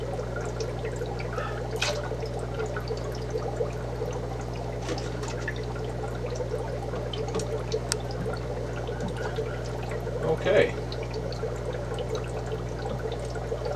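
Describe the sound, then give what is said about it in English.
Aquarium tank water pours steadily for several seconds to top off a container, a continuous trickling splash with a low background hum and a few small knocks, one louder near the end. No one speaks. “And then we're going to go ahead and top that one off with the rest of our tank water.”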